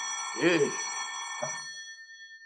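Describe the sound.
A telephone at the Lion Detective Bureau rings with a steady, bright metallic tone while a voice briefly sounds over it twice; the ringing then fades, leaving a single high note lingering.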